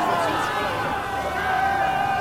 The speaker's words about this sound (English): It's quite evident the Yonkish have the greater numbers here. And the crowd is gathered together.